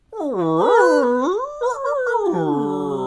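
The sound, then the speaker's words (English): A voice imitates a whale call: a loud, drawn-out wavering moan that swoops up and down in pitch for about three seconds, with no other sounds around it. “He should have done his whale call.”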